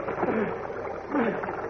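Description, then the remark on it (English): Rushing, icy mountain torrent water pours in a continuous, dense hiss-and-roar, swelling slightly twice, with faint muffled voice-like tones briefly surfacing underneath. “Superman is searching for Lois and Horatio, who, having made their way out of the submerged car, are clinging desperately to a slippery log and are being swept by the current at breakneck speed into a wider, icy cold mountain torrent.”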